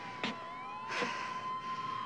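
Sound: ambulance siren wailing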